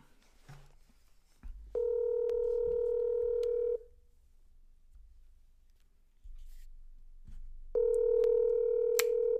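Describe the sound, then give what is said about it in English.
Phone dialing clicks as a friend is called, then two steady electronic ringback tones, each about two seconds long with a pause between, sounding slightly tinny over a speakerphone. No one talks. “So we're gonna call Our friend”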